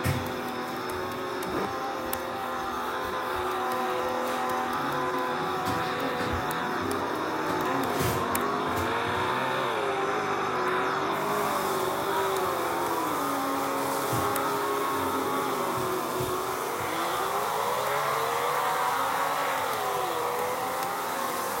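Formula One race cars roar continuously at Road Antioch as the race starts under the green flag, their high-pitched engines whining and shifting up and down in pitch as they drive, loud throughout with no talking.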